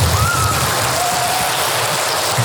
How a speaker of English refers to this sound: Give her a round of applause, would you?